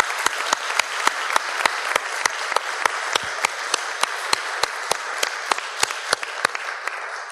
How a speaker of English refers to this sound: Before I do that, I ask for another wonderful round of applause